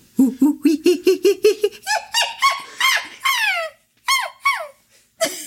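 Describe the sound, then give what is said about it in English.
A human voice imitates a monkey, starting with a rapid run of low, rhythmic hoots, then breaking into high, rising-and-falling squeals and shrieks in short bursts. “It is the monkey voice.”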